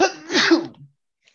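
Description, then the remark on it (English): A single forceful sneeze with a sharp breathy burst and a short trailing exhale, followed by silence. “Bless you.”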